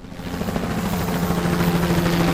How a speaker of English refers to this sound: Shit! Is that an army helicopter?